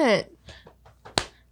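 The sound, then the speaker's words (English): A single sharp slap of a hand against someone's chest cuts in abruptly after a few moments of someone speaking, loud and over in an instant. “Oh, she smacked my titty again.”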